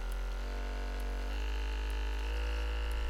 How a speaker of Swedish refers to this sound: Vet du vad det är? Nej. Det är en sån här muskelpistol som man masserar musklerna med.